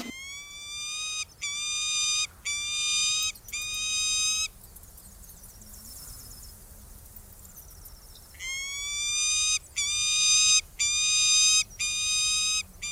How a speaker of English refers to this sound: Peregrine falcons, what a popular bird they are over here. I think the census is about 8 pairs, which is very good. They need quite a large area because they're taking medium to even large sized birds.